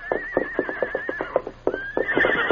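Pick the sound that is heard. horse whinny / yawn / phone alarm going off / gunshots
horse whinny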